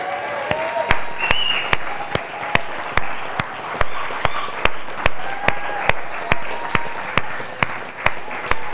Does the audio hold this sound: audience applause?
yes